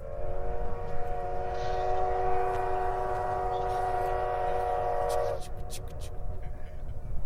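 A loud, sustained train whistle blows steadily for about five seconds over a constant low rumble of rolling railcars, then cuts off, leaving the clattering rumble and a few sharp clanks.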